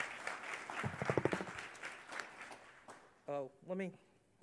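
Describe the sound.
An audience at a morning worship service breaks into a round of applause for a speaker about to announce the youth auction, a dense wash of clapping lasting about three seconds with a brief vocal cheer inside it, then fading as someone starts to speak.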